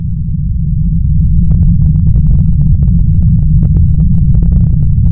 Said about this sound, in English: Next, a mighty earthquake shakes the ground violently.